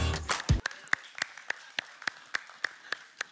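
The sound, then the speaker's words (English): An audience claps together in a steady, even rhythm, about a dozen sharp claps in quick succession after a brief burst of noise, with no talking over them. “It's still worthy of a clap.”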